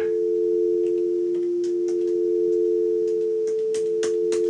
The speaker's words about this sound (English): Okay, so we should discuss what those two tones are. Because did you know that a dial tone is two tones?